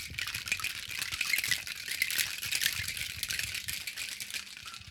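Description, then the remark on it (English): Ice rattles steadily inside a cocktail shaker as a pink drink called the Bella Blast is shaken, a dense, bright clatter of rapid rhythmic knocks that keeps going for several seconds with no voices. “Then, pour it all in a shaker full of ice. And then, you shake it.”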